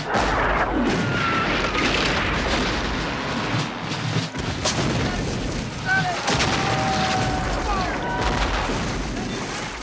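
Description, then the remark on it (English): Loud enemy cannon fire booms repeatedly early in the morning at Philippi in June 1861, over a dense, roaring battlefield din, with sharp blasts and crackling gunfire overlapping throughout, and no let-up from start to finish. “Early on that morning, we were startled from beds by the firing of the enemy's cannon.”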